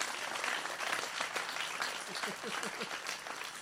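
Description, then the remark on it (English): An audience claps hands in praise to God, a dense, steady wash of applause that lasts the whole moment, with a few faint voices calling out underneath toward the end. “Oh, somebody clap your hands and give God praise.”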